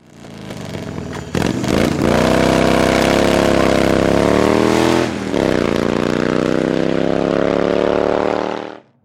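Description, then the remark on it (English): Loud Harley motorcycle engines roar past a front entrance, revving up with a brief dip in pitch midway before climbing again, holding a steady growl for several seconds before cutting off abruptly. No voices. “The motorcycles roared past the front entrance.”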